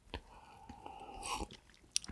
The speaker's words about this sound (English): Like, all right, we both drinks at the same time. We both had to take a sip after that one.